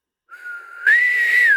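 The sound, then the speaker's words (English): A person imitates a high-pitched three-part whistle, low, high, low, as a short, shrill call: a steady lower note, then a louder, higher tone that swells and dips back down at the end. No talking. “Run if you hear a high-pitched three-part whistle. Low, high, low.”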